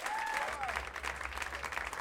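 A crowd applauds steadily for Swing Left's political director, a dense wash of many hands clapping at an even level for about two seconds, with a faint whistle-like tone sliding through near the start.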